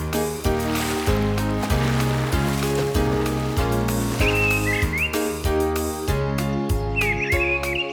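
Brief bursts of bird chirping at daybreak, two short twittering calls a few seconds apart, heard over a loud, continuous backdrop of steady music and rushing, wave-like noise.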